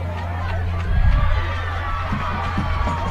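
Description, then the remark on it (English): Steady crowd noise with scattered clapping and cheering, swelling briefly louder early on before settling back into a low, continuous murmur of applause and voices, from crowds at games on other fields. “You can hear applause on other fields here as well.”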